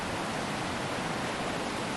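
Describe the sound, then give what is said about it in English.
A steady, unbroken rush of flowing water, like a stream, with a dense hiss that holds constant throughout and no voices. “And we're running with it, just like this water.”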